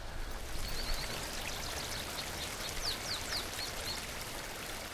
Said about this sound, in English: Frijoles Creek runs through a beautiful forest of old ponderosa pine, Douglas fir, and gamble oak along the canyon bottom here in Bandelier.